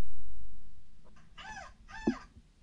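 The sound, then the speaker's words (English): A dog lets out two short, high-pitched whimpering cries a moment apart, over a low rumbling background with no talking, reacting to a person's seagull-call imitation playing from a speaker. “let's listen to this video here that was sent to me of a dog reacting to my seagull call”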